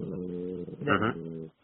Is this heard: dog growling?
yes